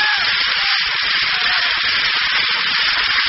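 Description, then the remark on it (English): A steady, loud rushing roar of an airplane flying overhead during a Giants versus Yankees baseball game in the fifth inning, a constant airy hiss-like whoosh that holds even for several seconds without speech or other sounds. “There's an airplane zooming overhead.”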